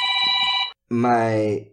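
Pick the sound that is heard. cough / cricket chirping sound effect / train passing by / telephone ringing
telephone ringing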